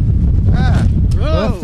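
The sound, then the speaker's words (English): Loud, steady low rumble of wind buffeting a microphone fills the whole moment, with faint voice-like tonal sounds rising briefly over it near the middle and end. “It got a little windy there.”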